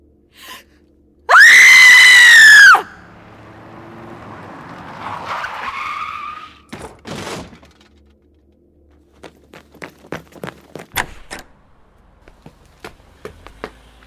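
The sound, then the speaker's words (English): A car's tires screech loudly as it skids to a halt at night, nearly hitting a child on a bike, then a person screams. Scattered sharp clattering knocks follow, with no talking. “That car almost hit that kid, but he doesn't look hurt.”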